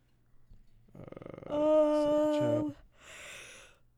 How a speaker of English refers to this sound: Sorry, I keep yawning.